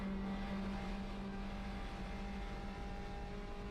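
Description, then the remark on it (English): A Honda CRX race car engine drones steadily at high revs, a strong low harmonic hum holding throughout with slight pitch wavering, loud with no voices. “That's my CRX.”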